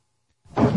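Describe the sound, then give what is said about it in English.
After a moment of silence, a door swings shut with a single solid, fairly loud thud that lingers briefly. “How dare you keep closing the door on me?”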